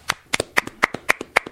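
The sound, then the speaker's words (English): Someone claps about six times at a steady, brisk pace. Each sharp clap alternates with a softer swishing rustle of jacket fabric, and no one speaks. “It's hard to applaud in this jacket.”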